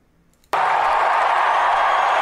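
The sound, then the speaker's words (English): After a brief quiet moment, a crowd suddenly erupts into loud, sustained cheering and clapping that holds steady at full volume until the end. “Look at the cheering.”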